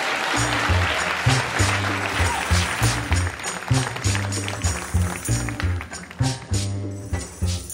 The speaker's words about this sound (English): Put your hands up. Please clap.